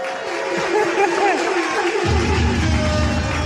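A crowd breaks into steady applause mixed with cheering and chatter, dense and loud throughout, with the low rumble thickening partway through as the clapping swells.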